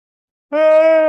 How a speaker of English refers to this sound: Ah, yawn. I'm gonna keep doing that this whole episode potentially.